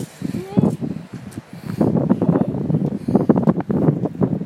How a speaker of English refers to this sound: See, it's windy in here. It's a little windy, but it's not that bad. I'm used to it. I live in Oregon. It's windy all the time.